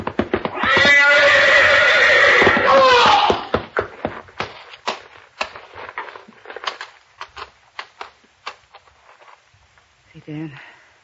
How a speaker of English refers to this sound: Watch out, Hauser. You're backing into the horse. Grab the horse, Novak. He's going to trample him.